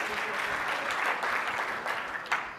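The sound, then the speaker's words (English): An audience claps steadily for a couple of seconds, a dense wash of many hands with a few sharper claps standing out near the end, no voices over it. “Clap that up, because it's real shit.”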